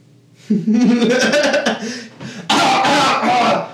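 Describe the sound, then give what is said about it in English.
A person fakes a cough in an exaggerated, theatrical way: a loud, throaty, rasping burst, a brief pause, then a second harsh, hacking burst, with nothing else around it. “And you start coughing.”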